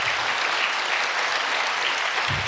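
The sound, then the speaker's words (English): Steady applause from an audience at Calvary Chapel Godspeak in Thousand Oaks, California, a dense, even wash of many hands clapping at once, holding at a constant loudness throughout with no voices rising above it. “And so with that being said, amen, you can clap for that.”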